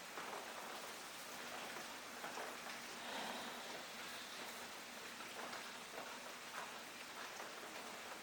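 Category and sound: nature, rain falling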